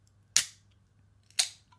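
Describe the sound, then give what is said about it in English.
A canned cocktail being opened with care after being inverted gently: two sharp, bright cracks about a second apart, each trailing off in a short fizzy hiss, over a faint steady low hum with no talking. “Okay, I'm opening with care.”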